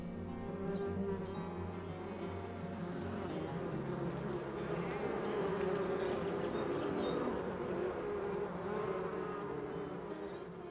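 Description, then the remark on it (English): A steady, dense drone of honeybees buzzing all around in a bee yard kept by local beekeepers in Onslow County, a continuous hum from many insects at once, holding fairly constant in loudness for the whole stretch with no one talking. “Let's take a visit into a bee yard with some local beekeepers in Onslow County to find out the mysteries behind bees and their honey.”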